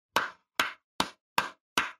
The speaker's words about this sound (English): All right, so this is my southern clap. And then you got the golf clap. And this is, well, this is my British clap. And this is my Aussie clap.